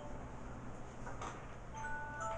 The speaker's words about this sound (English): That's your phone.